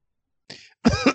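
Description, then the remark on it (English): A breathy, raspy throat sound leads into two or three loud, harsh coughs in quick succession, with no talking. “Oh, somebody's come down with consumption.”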